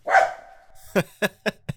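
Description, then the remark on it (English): A dog named Finn lets out a drawn-out, tonal bark, then a quick run of four short, sharp barks in an eager, lively rhythm, with no talking. “He barked happily.”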